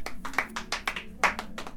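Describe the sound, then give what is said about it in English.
A small group claps at a quiz in St. Teresa's nursing home: a quick, uneven patter of overlapping hand claps with sharper accents throughout, moderately loud, with no voices. “Give him a round of applause there, lads.”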